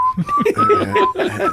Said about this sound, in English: For some reason, I always whistle Christmas music.